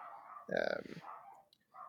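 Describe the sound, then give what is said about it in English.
A dog, one of several that bark at passersby from a patio, lets out one sharp, loud bark, briefly rising over quieter background talking. “I can hear your dogs. Sorry if everyone can hear the dogs.”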